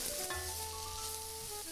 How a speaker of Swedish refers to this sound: Jag tar fram en... en träslev och rör lite. Gärna här.